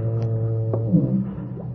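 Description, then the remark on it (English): A deep foghorn blast drones steadily through the whole moment, a low, buzzy, sustained tone with rich overtones, a brief knock and faint rustling sounding over it. “Hear the foghorn”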